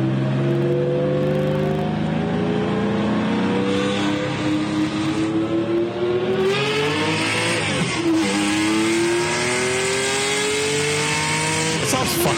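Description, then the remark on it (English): A white Porsche 911 SC with a three-litre flat-six engine revs and climbs through the gears with strong, steady harmonic tones, easing off briefly before pulling hard again; loud, with no talking. “That's my old 911 SC, my white one that I had.”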